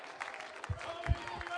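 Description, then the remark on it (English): An audience claps and shouts together during a sermon in a dense, lively wash of crowd noise, with a few heavier low thumps breaking through, sustained throughout. “Oh, you don't have to clap. You don't have to shout, because I've been through the loneliness.”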